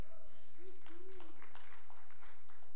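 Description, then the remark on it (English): Soft, scattered clapping from a small group, quiet and polite, with irregular sharp taps spread across a few seconds and a faint hum beneath, like a restrained golf clap. “I love golf claps.”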